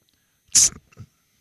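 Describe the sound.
A person does an impression of another person's sneeze: a sharp, hissing burst followed by a brief lower vocal tail, fairly loud, with no speech around it.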